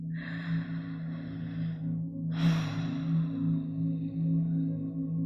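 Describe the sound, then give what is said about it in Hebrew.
Two slow, deep breaths, a long airy inhale then a longer exhale, fairly loud over a steady low drone. No one speaks. “נשימות עמוקות.”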